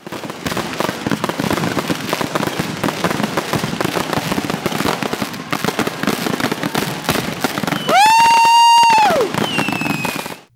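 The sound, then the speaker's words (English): Fireworks crackle and pop loudly in a dense, continuous barrage, then a shrill whistling rocket screeches for about a second before the bursts fade out. “Do you have an explosion or a firework sound effect?”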